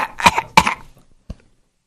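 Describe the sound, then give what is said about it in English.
Two loud, harsh coughs in quick succession, followed after a short pause by a single softer, brief cough, then quiet. “Start coughing on your teachers.”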